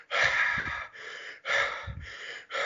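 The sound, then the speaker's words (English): Heavy, rapid breaths through the mouth: about four loud, airy inhale-exhale bursts in a steady rhythm, separated by brief pauses, with no talking. “So if you like right now, if your listeners and everybody just take a minute to breathe really heavy as if you're about to get into a fight.”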